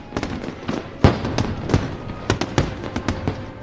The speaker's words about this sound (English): It's a little late in the summer for fireworks, isn't it?